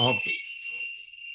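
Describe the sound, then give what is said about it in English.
A shrill, steady tea kettle whistle sound effect holds two high piercing tones throughout, with a brief burst of voice at the very start before the whistle continues alone. “That was a tea kettle, it sounded like.”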